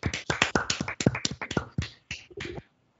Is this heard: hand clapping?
yes